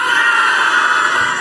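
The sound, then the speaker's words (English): A standing audience yells together on the count of three in one loud, sustained roar, a dense wall of many voices holding steady for a second and a half without a break. “And on the count of three, I'm going to ask you to yell.”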